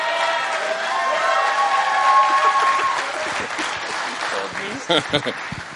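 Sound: raucous audience applause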